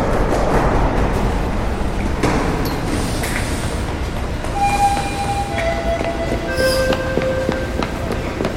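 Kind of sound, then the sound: vehicle, train departing from station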